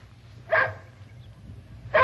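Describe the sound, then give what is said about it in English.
A dog barks twice during obedience training, two short, sharp yaps about a second and a half apart, over a low steady background hum with no talking. “Good boy. Good dog.”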